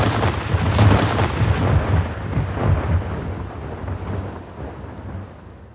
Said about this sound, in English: The lightweight Tilean boat thus moved away from the pass of the oncoming wolf ships, firing off a couple of cannonballs as they went.